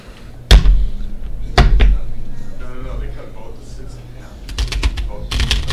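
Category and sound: household object, playing cards being shuffled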